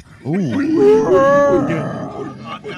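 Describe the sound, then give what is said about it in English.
A person voices a loud, drawn-out dinosaur-style roar, a growling, groaning bellow rising and falling over about two seconds, with no words spoken. “Wait, now we're making fucking dinosaur noises.”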